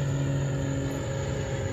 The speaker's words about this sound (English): Can you hear that plane